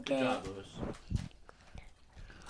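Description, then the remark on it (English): Crisp crunching as a potato chip is chewed: a run of sharp, irregular crunches that fade toward the end, with a brief voiced sound at the start. “Yo, he got that crunch too, bro.”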